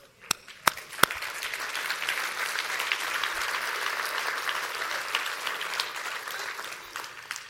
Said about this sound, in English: Nicodemus, Mary, Nathaniel, we applaud you tonight.